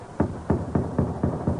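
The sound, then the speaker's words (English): Six firm, evenly spaced knocks on the heavy wooden gate of a stockade, fairly loud, each a dull thud with a short resonant tail and no voices. “The stockade ahead, sir.”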